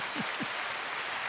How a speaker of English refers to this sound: Clap it up for Jordan shit.